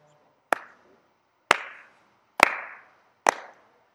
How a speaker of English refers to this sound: This is a big jump. Shu of China. Take his first attempt. He's clean all the way through. He's clean. He set a PR, national record. If he makes this, he takes over the lead. And he's asking for the slow clap.